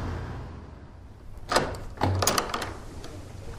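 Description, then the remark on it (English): Old turn-of-the-century wooden double arch doors creak and knock as someone walks through them out into a quadrangle, with a couple of thuds and a scraping rattle against a low, steady background rumble. “I've just walked through some turn-of-the-century double arch doors.”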